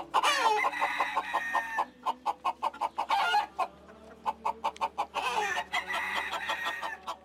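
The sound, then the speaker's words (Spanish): Roosters crow loudly, with a long crow at the start and another near the end, while hens keep up a quick, steady run of clucking in between. “Llegaban por la gran puerta entreabierta el quiquiriquí de los gallos y los mugidos de las vacas tumbadas en un campo cercano.”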